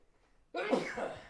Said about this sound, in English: Bless you. Excuse me. Bless you.